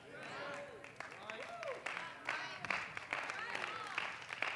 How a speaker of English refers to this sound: Oh, I can't hardly hear. Y'all are clapping so loud.